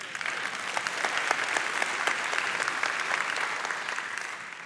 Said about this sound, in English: God made this, and he's the only one that can tame this, and everybody should clap right there.